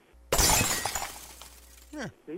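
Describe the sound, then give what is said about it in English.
A glass Christmas ornament ball, thrown by a girl against a wall in a house in Port Hope, smashes sharply and loudly, bright shattering with tinkling debris scattering for over a second, followed by brief voice-like exclamations near the end. “Here's his daughter smashing the ball in his house.”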